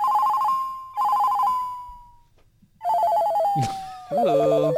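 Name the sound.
mobile phone ringtone playing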